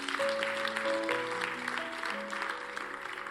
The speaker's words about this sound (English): Thought you were clapping this morning.